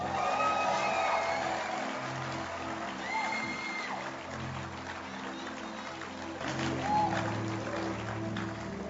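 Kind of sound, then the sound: crowd, people clapping their hands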